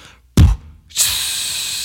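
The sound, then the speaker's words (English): A voice imitates the HBO TV intro static: a brief breathy thump, a short pause, then a steady, bright hiss held for about a second at even loudness until the end. “It's just the static.”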